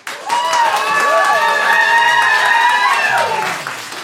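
An audience bursts into steady applause lasting about four seconds to vote for Pictionary as the best game for Family Game Night, dense clapping mixed with high whoops and cheers rising and falling over it before it tapers off.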